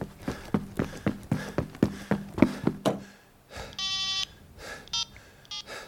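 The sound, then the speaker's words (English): A telephone busy tone on a call to the local fire department, whose lines were engaged, sounds in clear electronic beeps: one longer tone, then shorter blips, fairly loud, after a run of steady rhythmic thumps with no talking. “I didn't even get a call sound, just that beep, beep, telling me the local fire department's lines were already chockers.”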